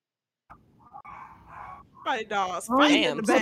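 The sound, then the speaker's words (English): A dog barks and yelps in a rapid run of loud, high-pitched bursts that grow stronger over the last second and a half, following a quieter, muffled stretch of sound. “The dog is fighting for their life in the back.”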